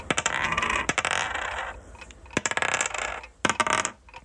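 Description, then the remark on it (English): Four dice clatter and tumble across a hard surface, a burst of quick sharp clicks and rattles that settles, then a couple more bouncing knocks follow near the end. “So you're left with four dice. Yes, all right. So roll those.”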